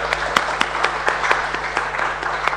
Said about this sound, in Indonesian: Kita berikan tepuk tangan dulu buat mereka ya.